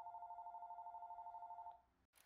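A single warbling electronic telephone ring trills steadily for nearly two seconds, then cuts off into a short pause followed by a brief noisy click, before a voicemail greeting answers.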